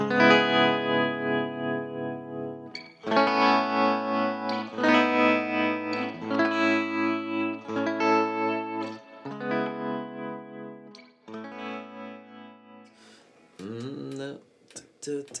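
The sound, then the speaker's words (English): A distorted electric guitar through a Marshall amp profile, bass dialed back, mids pushed up and presence down, plays chords and short riffs with reverb and delay trailing each strum and a few quick picked notes near the end. “Okay, so this is the Marshall number 7 profile, bit of reverb, bit of delay.”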